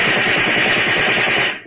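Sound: gunshot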